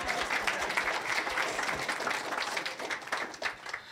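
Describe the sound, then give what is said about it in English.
A crowd applauds the speakers after a talk, dense overlapping claps forming a continuous bright patter that holds at a fairly even loudness for several seconds with no voices over it. “So we're going to all clap for you.”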